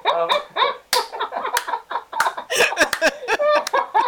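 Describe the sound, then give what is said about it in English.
One sharp, loud hand clap cuts through lively voices and laughter, followed by more animated chatter with a few other quick percussive snaps. “Oh man, I've just clapped out loud and possibly ruined everything.”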